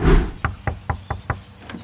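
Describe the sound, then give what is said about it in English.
Five or six knocks on a house door in a steady, even rhythm, fairly loud, with the last couple softer, after a brief burst of noise at the start, as someone goes door to door trying to book a gig. No one speaks. “Neville was learning that door-knocking houses to book a gig was harder than he thought”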